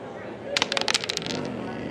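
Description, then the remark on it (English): A quick burst of sharp, clicking rattles of one die shaken in a dice cup during a game of Yahtzee, lasting about a second over a low background murmur before it trails off. “One dice back in the cup.”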